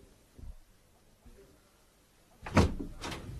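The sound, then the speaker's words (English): A door opens with a sharp wooden clunk and rattle, followed a moment later by a second softer knock, after a few quiet seconds with faint room noise. “Shut the door”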